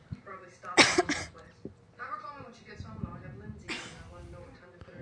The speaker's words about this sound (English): Yeah, I keep coughing.